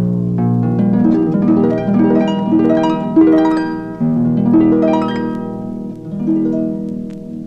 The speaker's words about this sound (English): The sound of a harp.